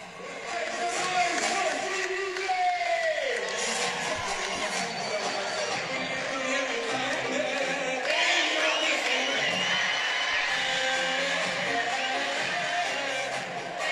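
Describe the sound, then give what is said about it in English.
A large stadium crowd sings together after Gohar has won a squash match, while waiting for the ceremony: a dense, steady wash of many voices with sustained melodic lines, cheering and shouts mixed in, continuous and loud throughout. “I mean, the whole crowd is singing.”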